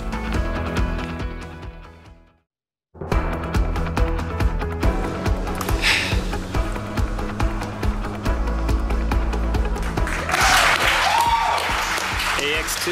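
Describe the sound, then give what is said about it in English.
Studio audience applause rises over loud, upbeat music after a brief silent break, the clapping growing into a dense, steady roar toward the end. “All that applause because, well, this is your morning moment.”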